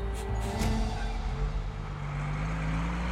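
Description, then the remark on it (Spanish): A bus rolls along a road, its engine a steady low drone with a deep hum and rushing road noise that stays constant throughout, fairly loud. “Sin pensarlo demasiado, sube a un autobús que lo llevará a la última estación del caso.”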